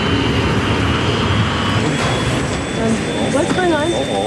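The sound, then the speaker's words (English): A loud, steady roar of an Airbus airliner's number one jet engine at maximum thrust, running alone after the right-hand engine ran out of fuel and cut out, with a thin high whine throughout, unbroken; a voice briefly rises over the din near the end. “The right-hand engine runs out of fuel and cuts out. We're losing engine number two.”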